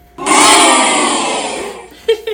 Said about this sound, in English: Oh, he booed himself.